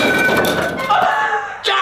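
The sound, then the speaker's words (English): A homemade subscribe button gets smashed: a couple of dull thumps and knocks over a sustained, ringing tonal hum, ending with a sharper hit. “I smashed subscribe!”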